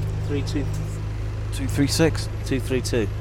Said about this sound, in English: Anyway, it's going to Turnpike Lane, this bus. And it's taken us all the way home.